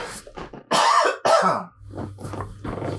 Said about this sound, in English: excuse me one more time. I think I got another cough coming. I should have got some water before I started this, so hold on real quick.